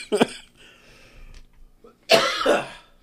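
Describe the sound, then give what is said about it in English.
Two loud coughs: a short sharp one at the start, then a longer, rougher burst after a brief pause with faint murmuring between them. “Edit those coughs out.”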